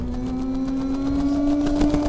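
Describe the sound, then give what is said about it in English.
An eerie screech sound effect representing La Lechuza, a legendary witch said to appear as an owl: a loud, sustained buzzing tone that holds a steady pitch for about two seconds with a rough, grinding texture and no talking. “That would be La Lechuza, which is the Spanish word for little owl.”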